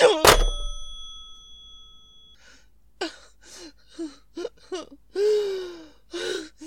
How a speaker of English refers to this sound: Hello? Hello? Hi. If you don't stop ringing me, I'm going to call the police. Do you hear? The police!